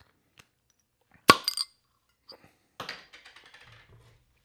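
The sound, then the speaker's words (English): A bottle of Birthday Bomb beer, 12% ABV, from the Artisan Ales Prairie Series is opened: the cap pops off with one sharp metallic snap and a quick ringing clink, followed a moment later by a short burst of crackling fizz and light rattles. “And we're going to pop this motherfucker open.”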